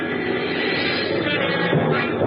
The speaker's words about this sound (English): My plane dropped out of the sky over Phoenix gently at 3.